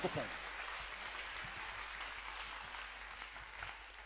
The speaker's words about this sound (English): It's a good pleasure to clap your hands for the Lord.